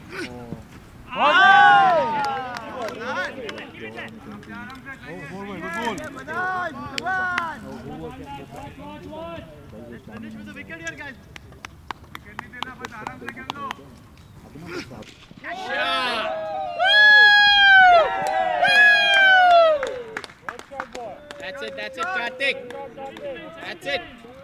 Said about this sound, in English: It's a Saturday morning in December. The sun is out, but the air is cool. This is a cricket match at Centerville Community Park.